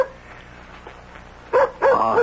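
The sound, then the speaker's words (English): A dog at the door barks twice in quick succession after a quiet stretch, each bark loud, sharp and slightly yelping, with faint background noise underneath and no talking. “That's Nikki at the door with my dog.”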